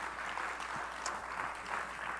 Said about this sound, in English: Oh, somebody clap your hands unto the Lord if you believe that. God has better things for you.